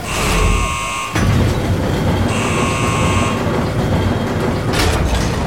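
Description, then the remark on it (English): Heavy hydroponics pressure doors on a spaceship grind shut to seal off a hull breach, with a loud, steady mechanical rumble, while a harsh electronic buzzer sounds in two bursts and a sharp clank lands near the end. “Sealing hydroponics pressure doors in 3, 2, 1...”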